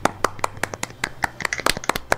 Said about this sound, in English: This gave us a lot to talk about, so I'd like all four of us to give a round of applause to Jared.